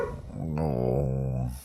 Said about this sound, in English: And the dog's barking. Of course they are.